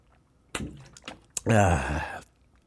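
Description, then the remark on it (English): A few soft gulping sounds of drinking water, then a loud, drawn-out voiced "ahh" gasp of refreshment that fades out after about a second. “Let me get some water.”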